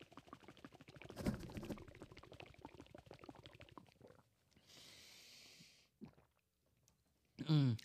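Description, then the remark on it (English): Someone gulps down a shot of Baileys, with a quick run of wet swallowing sounds, then a breathy exhale and a brief voiced gasp at the end. “That was a lot to fit in the whole gullet, wasn't it?”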